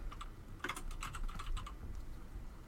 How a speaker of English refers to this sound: I was already typing it for you.